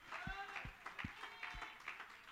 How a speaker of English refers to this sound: Somebody give God praise here today. Give God a hand clap and a shout.